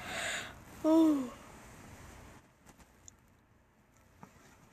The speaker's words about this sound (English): I keep on yawning. Sorry about that.